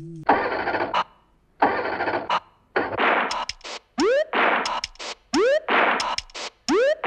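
An engine cranks in rough, repeated bursts, then catches and revs in a series of rising whines, loud with short gaps between, no voices.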